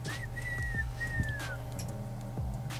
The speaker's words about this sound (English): And then I just have a quick blow the whistle to get us up out of here.